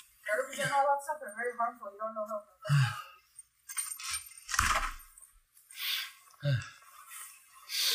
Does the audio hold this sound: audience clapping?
no